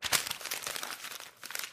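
Crisp crackling of paper being crumpled by hand, a dense burst of irregular crinkles lasting under two seconds with a brief lull before a final flurry.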